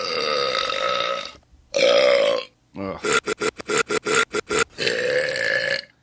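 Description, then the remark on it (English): Loud burp sound effects play from a soundboard in quick succession: a couple of long, rumbling belches, then a rapid staccato run of about eight short burps, and a final drawn-out one. No one talks. “Those are really gross burps.”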